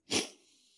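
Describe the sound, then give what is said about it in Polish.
A single forceful breath through the nose by a patient breathing deeply as a doctor listens to his chest from the back: a sudden loud, breathy hiss that fades quickly into a soft airy trail, with no talking. “Proszę głęboko oddychać. Tak? Przez nos.”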